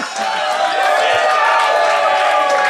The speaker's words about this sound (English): They love booing.